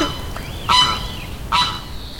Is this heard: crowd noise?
no